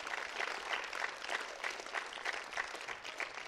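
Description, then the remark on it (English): A church audience claps for Jesus steadily for several seconds, a dense wash of many hands with faint rhythmic pulses, fairly loud and sustained throughout, no voices standing out. “Give Jesus a hand clap.”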